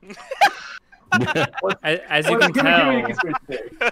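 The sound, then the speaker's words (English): A person imitates a chicken clucking, with a short burst, a pause, then a run of choppy, throaty clucks rising into a longer warbling squawk before trailing off. “Nice chicken there, buddy.”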